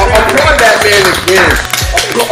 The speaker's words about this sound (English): You heard that? He writes. Applaud that man again.